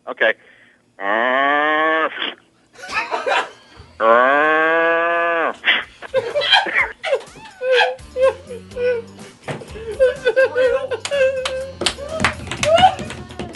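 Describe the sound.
A man gives two long, loud, drawn-out cow-like moos, imitating a harelip cow with a distorted, nasal tone, followed by a burst of laughter and scattered voices.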